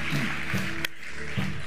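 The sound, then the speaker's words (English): An audience claps together for the Lord in a steady, dense patter that fills the whole clip, one sharper crack standing out midway, with faint low voices murmuring underneath. “Come on, give the Lord a clap.”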